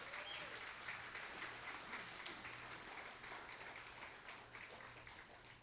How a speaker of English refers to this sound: Can we get our hands together and give them a round of applause?